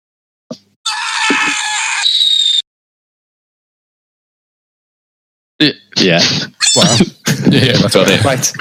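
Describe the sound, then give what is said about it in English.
A loud, shrill scream rings out for about two seconds, then silence, followed by a burst of frantic overlapping screams and shrieks, a horror sound effect used to sum up the film Cloverfield. “Oh, you need is a monster or screams.”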